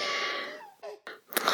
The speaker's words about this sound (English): And this reboot is, what, a crying baby? Yeah, well, it's not a crying baby, it's just a baby. Oh, he coos and laughs, too.